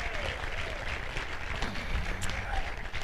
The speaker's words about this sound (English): Can you give Him a hand clap of praise in the house?